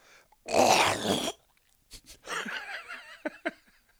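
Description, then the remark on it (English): A loud, rasping throat clearing, one harsh burst lasting under a second, then a short pause and some low, wavering vocal noises. “I had to clear my throat.”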